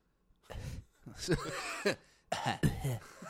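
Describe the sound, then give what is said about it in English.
A person coughs in several harsh, rough bursts spread over a few seconds after drinking burning bourbon, with strained, throaty vocal noises mixed between the coughs. “Let's just fucking stop the podcast now so you can fucking cough all over the place.”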